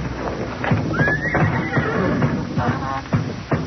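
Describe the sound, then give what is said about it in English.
Several old horses, tied up in their barn stalls, whinny and neigh with shuffling hooves and stamping underneath, a busy, restless stable sound throughout. “All those old nags tied up in their stalls?”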